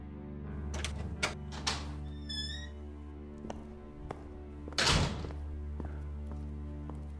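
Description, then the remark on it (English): A door opens with a few soft knocks and thunks, a brief high chime rings out, then the door shuts with a louder thud, all over a low steady hum with no one talking. “This time, when I walked through the door, I could feel a strong energy.”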